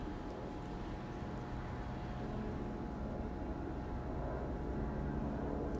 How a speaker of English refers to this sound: Yeah, there's that other helicopter. Don't know who they're looking for.